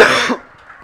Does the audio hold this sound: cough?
yes